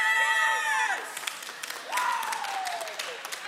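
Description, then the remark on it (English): A large crowd screams and shouts in loud reaction, with high voices sliding downward in two swells and scattered clapping mixed into the roar. “I heard you scream, but I didn't say extra fries.”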